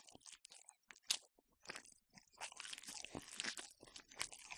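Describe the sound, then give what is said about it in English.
Wet chewing and crunching of chicken right against the microphone, irregular bites and smacking, continuing steadily for several seconds with no talking. “Chewing on that mic, dude.”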